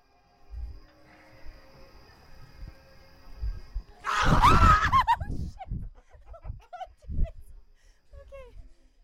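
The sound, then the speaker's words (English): After a few quiet seconds of muffled movement, a sudden loud burst of high-pitched screaming erupts from several people on a haunted trail, then breaks into scattered shrieks, laughter and voices. “Brace yourselves for our screams.”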